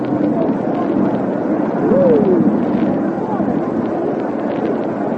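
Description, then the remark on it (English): A steady, loud roar of military service planes flying overhead in an aerial salute to the series during a baseball game, a dense rumbling drone that swells slightly midway, with a brief falling whine cutting through the noise. “And ladies and gentlemen, there is a magnificent aerial show going on overhead.”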